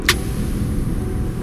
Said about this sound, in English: About 20 feet from the edge of the world, I ease the rig to a stop.